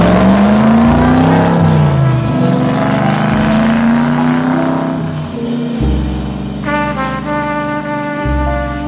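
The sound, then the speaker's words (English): A loud car engine revs, its pitch climbing and dropping in a couple of surges before settling into a steady, sustained drone. No one speaks. “How do you say vroom vroom?”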